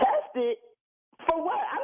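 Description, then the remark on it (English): A single short cough bursts out between stretches of voiced, murmuring vocal sounds at moderate loudness, with a brief silent pause before it. “they're saying that, you know, you're coughing a lot, and coughing.”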